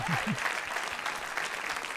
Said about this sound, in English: They're still clapping. Wow. Thank you.